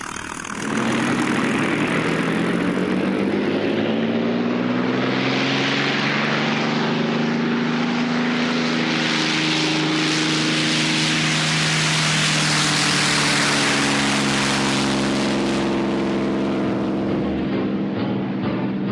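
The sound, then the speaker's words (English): A P-51 Mustang's propeller engine roars steadily, its low harmonic drone shifting slightly in pitch as the throttle changes, loud and continuous for the whole stretch with no voices. “So, with the push of the throttle, Ralph was young again.”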